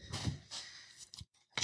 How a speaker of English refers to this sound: Sorry. Shit. It's all right. I've been holding it in the whole episode. I've been trying not to do it. Just cut around it. Oh, I'm going to. I have to. I'm not going to keep the sneeze in.